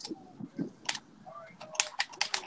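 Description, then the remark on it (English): Rapid, hard clicking of Xbox game controller buttons while someone plays, a quick irregular flurry of sharp taps, with faint voices murmuring in the background. “I'm playing Xbox. Tapping the controller hard as shit.”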